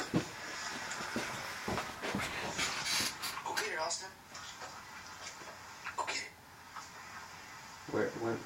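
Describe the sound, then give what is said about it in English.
A dog in a video pants in quick, breathy bursts and lets out occasional soft whimpers, sounding slightly tinny as if played from a phone, with faint voices in the background. “It's a really fucking cute dog.”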